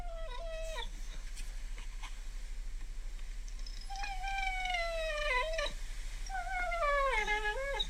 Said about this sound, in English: Just wait. Like, this just sounds like a crying dog. But oh my gosh. He sounds like a monkey, right? Yeah, he did. He sounded like a monkey there for a second.